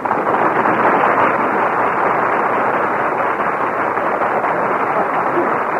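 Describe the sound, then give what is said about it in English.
A large studio audience at a Jack Benny radio broadcast claps steadily for several seconds, a dense, even wash of applause with no voices over it, heard through a thin, band-limited old recording. “Gee, he got more applause than if he were here.”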